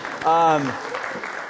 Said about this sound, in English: You guys are applauding. You don't even know what they've done.